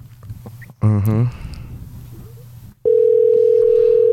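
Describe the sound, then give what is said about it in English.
After some low background murmur and a brief harmonic burst, a loud, steady phone ringing tone of a call to a friend begins and holds one unbroken mid pitch through to the end. “You gotta pick up, babe.”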